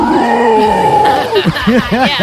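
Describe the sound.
A voice imitates a warthog or wild boar grunting: a loud, drawn-out strained vocal tone, then a quick rhythmic run of about five short, rising-and-falling grunts.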